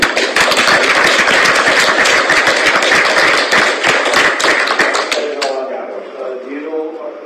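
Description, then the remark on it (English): At a meeting, a crowd breaks into steady, loud applause for a man who ran the telecast, many hands clapping densely for about five seconds before it quickly fades, leaving faint voices murmuring at the end. “So I think he deserves a round of applause.”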